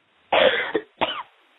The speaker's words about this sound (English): Now cough those out, everyone.